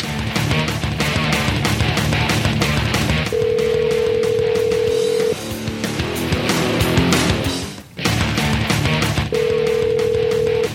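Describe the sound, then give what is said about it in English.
A steady telephone dial tone hums in two long stretches, broken by a burst of quick dialing beeps as a call is placed to bring a guest live on the Shop Talk show, all over a busy, fairly loud background of music-like clatter. “All right, well, let's go to the phones and see if we can get Mr. Dodge live.”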